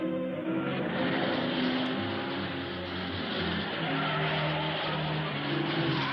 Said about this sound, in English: Car chase, car chase. Actual car chase. This time we're going to see the full damn thing. Going on the side of the mountaintop. Everybody's having a good old time.